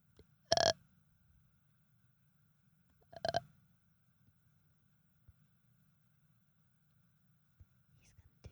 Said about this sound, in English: Dude, burp right into the microphone. I do it all the time.